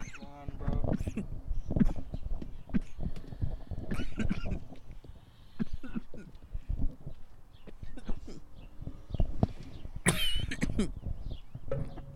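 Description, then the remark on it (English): Someone coughs hard and repeatedly after taking a dab hit, harsh hacking fits that keep coming for about twelve seconds, with a few voices heard between the coughs. “This boy's coughing up a lung on a dab actually.”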